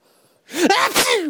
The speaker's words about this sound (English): had a sneeze. And he held it back in.